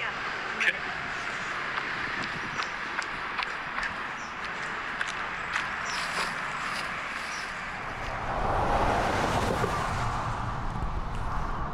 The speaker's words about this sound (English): So I'm standing here on the Appalachian Trail right alongside a busy highway that runs directly by some sort of refinery.